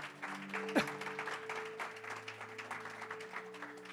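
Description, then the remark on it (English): An audience applauds steadily, a dense wash of many hands clapping that holds at an even level for the whole stretch, with a faint steady hum underneath. “Let's give the man a round of applause.”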